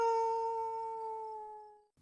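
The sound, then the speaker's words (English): A single long, steady wolf howl holds one pitch and slowly fades over about two seconds, clear, with no speech. “Downtrodden and sore, the conquered canine quickly got up on all fours and began yipping and howling as he ran off with his tail between his legs.”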